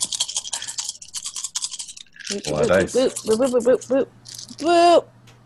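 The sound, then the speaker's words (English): A rapid, dense clatter of many dice, including a wild die, rattling and tumbling for about two seconds, followed by a person speaking with a few faint clicks underneath. “I wasn't anticipating using so many dice, so. Yeah. Oh, shit. Okay, there it goes.”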